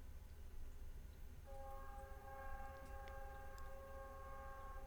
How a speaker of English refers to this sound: As we enjoy the train in the background to remind us to get out of the way of dangers of life.